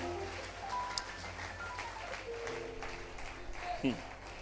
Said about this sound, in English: Then clap your hands for the Lord, somebody.